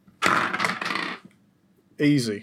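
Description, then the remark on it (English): Three dice clatter and tumble across a hard surface for about a second, a busy rattle that settles, followed shortly by a voice speaking. “let's roll. Smarts. Yeah. Three dice.”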